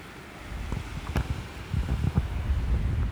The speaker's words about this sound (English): High up on the windy peak of the Lost Mine Trail, hoping not to see any more tarantulas, I can truly appreciate how vast this park is.